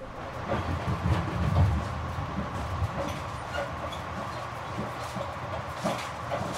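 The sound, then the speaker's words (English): A train rumbles steadily along mountain tracks clinging to the side of a mountain above a deep valley, with a continuous low roar and rattling of wheels and cars, interspersed with faint clicks and clanks over several seconds. “Clinging to the side of the mountain with a deep valley on the other side of the train before we see the mountains across the river.”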